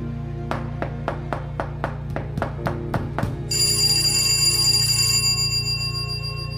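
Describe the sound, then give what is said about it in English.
A pull bell, rung after knocking was heard at a door, rings in a quick, steady series of about nine clear strikes, then gives way to a sustained, shimmering high ring that fades out, all over a low background hum. “If you hear the knocking again, please don't hesitate to pull the bell.”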